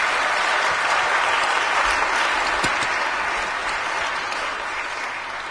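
Steady audience applause, a dense wash of clapping hands that holds at a fairly loud level for several seconds before easing slightly toward the end, with no voices over it.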